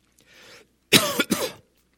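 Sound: coughing and throat clearing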